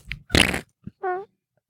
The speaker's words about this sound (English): Walk in front of him, like, just fart or something.